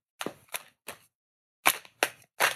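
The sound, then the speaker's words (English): A deck of cards being shuffled: six short, crisp riffling bursts, three quick ones, a pause, then three more, fairly loud with no talking. “All right, I'm about to start shuffling ASMR.”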